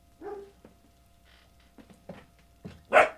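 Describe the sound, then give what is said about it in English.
Dogs bark in a scattered series of short yaps and woofs, ending in one louder, sharper bark. No one speaks. “We got some dogs right here.”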